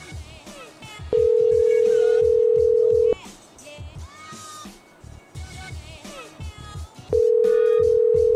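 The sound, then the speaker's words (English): A phone line rings: a steady, mid-pitched ringback tone sounds loudly for about two seconds, pauses, then starts again, while voices and cat-like meows carry on underneath. “And then it hung up. Did she try and pick up?”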